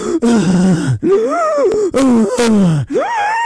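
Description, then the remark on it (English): A man's voice imitates heavy, labored breathing, like LeBron after running coast to coast in a game: a run of four loud, strained gasps and groaning exhales in quick succession, with no other sounds. “That's me breathing as if I can't breathe.”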